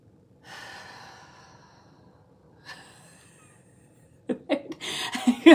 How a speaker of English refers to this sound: One deep breath, I can feel my nervous system completely calm down. My shoulders are more relaxed, you know?